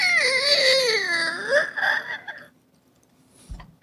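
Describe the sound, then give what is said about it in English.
A drawn-out creaking of a door swinging open in a telling of Hansel and Gretel, imitated by a voice as a wavering, whiny tone that bends down and back up over two seconds, followed by a short soft thump. “Then the door creaked open.”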